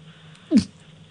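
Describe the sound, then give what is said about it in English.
A voice imitates a girl's dainty sneeze: one quick, squeaky, high-pitched burst, brief, with nothing but quiet around it. “I don't like girls that sneeze by going...”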